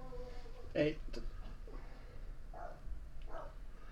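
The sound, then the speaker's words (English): A dog barks several times in the background, a sharp, louder bark near the start followed by softer, scattered barks, over a low steady room hum. “Sorry if y'all hear a dog in the background.”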